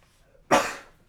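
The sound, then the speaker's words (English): A single sharp sneeze bursts out suddenly, loud, then fades quickly into a breathy tail. No talking is heard. “And one second, I'm about to sneeze.”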